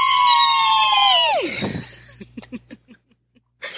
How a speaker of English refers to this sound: For so many people, just have to give you a applause and a huge scream.